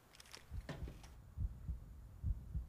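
A deep, muffled heartbeat thumps in paired beats, lub-dub, repeating steadily at a slow pace at the start of a song, with faint hissy texture above it early on and no voices.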